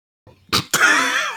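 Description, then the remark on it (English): Two quick, breathy sniffs of whiskey into a microphone during a whiskey tasting, loud and close together, followed by a drawn-out voiced sound that wavers in pitch and holds steady to the end. “Did you sniff into the microphone?”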